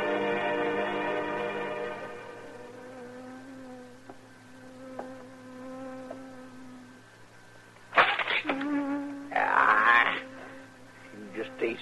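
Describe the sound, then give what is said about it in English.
A steady, droning buzz of a bee hums along for several seconds, then louder, rougher bursts of buzzing flare up near the end as the bee buzzes around a man's head. “Doggone bee buzzing around his head all day”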